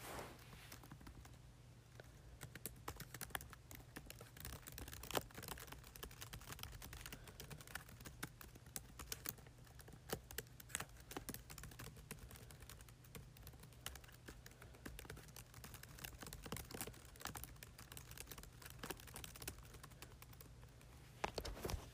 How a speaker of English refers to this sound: Okay guys, so now I'm going to do some, like, I don't know, maybe some, like, typing. So let's just try it. Okay guys, so it's time to type.